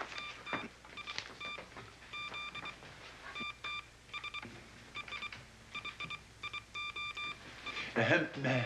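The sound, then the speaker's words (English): A run of electronic tone beeps taps out a message in bat code over a wire, sent as a signal to Alfred, in short bursts and pauses, steady mid-high pitches repeating over a low background hum, ending in a brief louder clatter. “Now, to send a message in bat code.”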